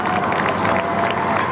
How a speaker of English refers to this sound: So if you're a medical professional and you're out there listening to this, big round of applause for you.